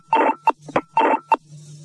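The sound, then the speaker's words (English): A short run of electronic telephone line tones on an STD (long-distance) call, several quick bursts in an uneven pattern with steady hum beneath, clear with no voices. “Well, there was somebody on the phone there, but through. It was an STD, but they didn't want to say anything.”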